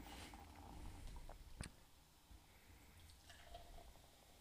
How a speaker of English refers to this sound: And that's the pouring of the drinks, not the people on the streets.